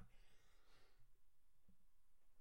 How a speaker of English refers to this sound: Excuse me, sneeze attack. Not cutting it out because we're talking. People sneeze, people stutter.